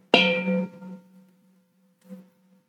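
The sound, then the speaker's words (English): A meditation bell is struck once to begin a mindfulness meditation, its bright metallic ring and layered overtones fading out over about a second into a low lingering hum, followed by a soft brief tap. “There'll be one bell to begin and three bells to end.”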